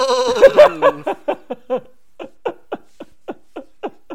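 A goat bleats: one drawn-out, wavering cry that breaks into a quick stuttering series of short bleats, about a dozen in a steady rhythm, gradually softening.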